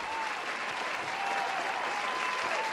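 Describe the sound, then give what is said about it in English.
Steady, dense applause from a crowd, many hands clapping at once in a continuous loud wash with no pauses, filling the whole moment without any talking. “I can hear you over the... Claps, man.”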